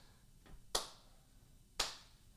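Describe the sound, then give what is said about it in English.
A feeble round of applause in a studio: just two sharp, isolated hand claps about a second apart, preceded by a faint tap, with no voices and little else around them. “That I think that goes down in history as the worst round of applause we have had in studio.”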